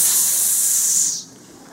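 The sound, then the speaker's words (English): A sustained, breathy hiss from audience members, bright and steady for over a second before cutting off abruptly, leaving a faint low murmur behind. “Whoever just hissed, that is hiss worthy.”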